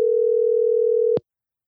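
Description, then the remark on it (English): A steady, unbroken telephone dialing tone hums at a single mid pitch for just over a second, then cuts off abruptly with a small click, leaving silence. No voices are present. “Let's go ahead and give him a call.”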